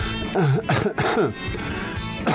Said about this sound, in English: It's just a dry cough I've had for a couple of weeks.